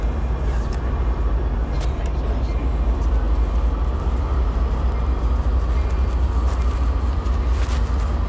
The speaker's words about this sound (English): Anyway, we're coming down to the platform, so you probably hear all the bells and the whistles and the peoples. You'll also hear announcements.